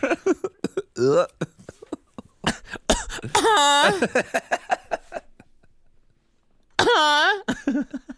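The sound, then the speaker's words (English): Exaggerated, theatrical coughing comes in a series of sharp bursts, several stretching into drawn-out, strained vocal groans, fairly loud with short pauses between them. “Cough into my pussy right there.”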